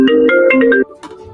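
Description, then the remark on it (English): A loud electronic phone ringtone for an incoming call plays a quick melodic pattern of stepped tones for under a second, then cuts off, leaving faint background noise. “Oh, we got a call.”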